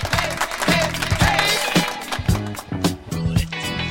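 A burst of clapping and applause, dense and steady for a few seconds, with a low musical hum running underneath.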